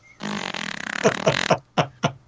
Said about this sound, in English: Are you sitting on your microphone? No. No. Some strange noises. Shitty furniture. I swear it wasn't farts, okay?